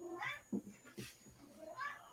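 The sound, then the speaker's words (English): A male pet cat meows loudly and insistently, two drawn-out yowls with a brief rustle between them, no talking. “My cat's yelling at me.”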